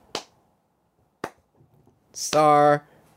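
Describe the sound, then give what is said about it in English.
Two slow, sharp sarcastic hand claps about a second apart, flat and unenthusiastic, followed by a brief hiss and a short, drawn-out vocal sound. “Sarcastic claps.”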